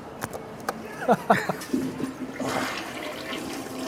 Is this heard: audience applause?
no